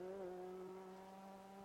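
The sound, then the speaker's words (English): A race car's engine roars loudly and steadily, its high droning whine dipping slightly in pitch early on as it sweeps past on the track to complete another lap, with no voices. “Coming through to complete another lap.”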